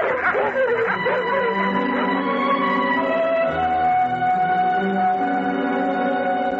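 A loud, continuous commotion of three dogs barking and yelping together, dense and chaotic without a clear break, filling the whole stretch.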